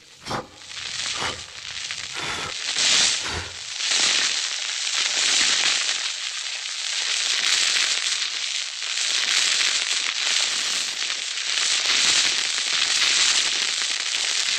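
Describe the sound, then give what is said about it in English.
Steady, breathy blowing rushes over a small fire that has almost gone out, to bring it back to life, while embers snap and crackle, with sharp pops clustered in the first few seconds before a sustained hiss takes over. “Almost gone out. I will blow it into life.”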